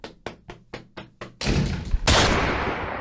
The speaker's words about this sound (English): You're going to hear a door close and a gunshot that I'm going to put in post.